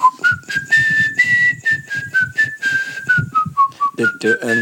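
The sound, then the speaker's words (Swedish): A clear whistled melody played as closing-time music in an IKEA store, drifting up and down in steady, sustained notes for several seconds, fairly loud, with faint murmuring voices underneath. “Jag tror att det är den som visslas.”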